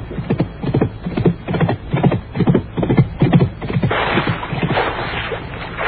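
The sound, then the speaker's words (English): A horse's hooves clop in a quick, uneven rhythm for a few seconds, fairly loud, as the horse bucks and throws its rider into a swamp at Hayes Meadow, then give way to a sustained noisy rush. No one speaks. “The horse just bucked and threw him into the swamp here at Hayes Meadow.”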